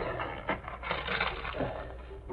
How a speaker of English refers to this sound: And crumpled paper all over the floor.